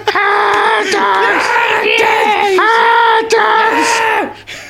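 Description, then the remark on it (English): A loud, raw human scream from a carny character in the ninth Mickey Mouse cartoon short, sustained for several seconds, with strained harmonics and a few breaks where the voice cracks and surges again before trailing off. “A primal scream from a dirty carny.”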